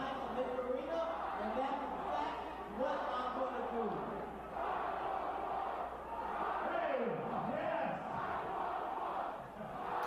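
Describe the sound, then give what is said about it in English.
A large wrestling arena crowd chants in unison for 911, voices rising and falling in a steady rhythmic pattern, loud and continuous for the whole stretch with a dense roar of cheering underneath. “All right, so the crowds are already chanting for fucking 911.”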